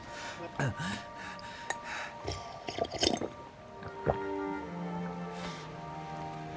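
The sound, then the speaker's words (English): Wet splashing and dripping of water being poured or sipped, in short irregular bursts, followed by a steady low hum with faint breathy vocal sounds. “Oh, love, here's some water.”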